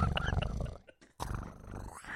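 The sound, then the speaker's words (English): A voice imitates a predator's growl: a low, raspy rumble broken by a short pause, then a second gravelly burst that trails off. No one talks over it. “So this you almost had a predator growl.”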